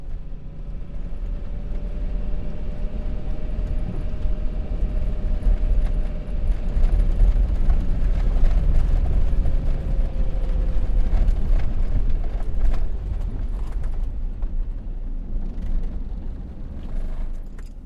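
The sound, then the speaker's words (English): A car engine runs with a steady, deep rumble and a faint whining tone over the first half, holding an even loudness until the sound cuts off at the end. “Engine stops, and recording as well.”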